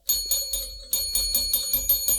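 A bright metallic bell rings in a quick, steady series of about nine strikes, each ringing briefly before the next. Fairly loud, with no one speaking.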